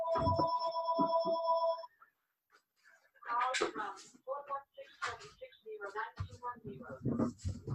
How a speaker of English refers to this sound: And I forgot to unplug the phone.